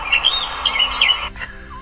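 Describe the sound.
A human voice attempts a cat's meow but produces high, bird-like chirps and tweets instead: a quick run of several bright, warbling calls, fairly loud, with no speech.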